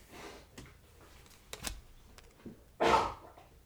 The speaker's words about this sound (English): As my dog huffs and puffs and moans and groans because he's old.